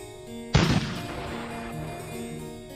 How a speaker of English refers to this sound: Cannon in the distance. Was it a signal? Is it artillery? Come for us.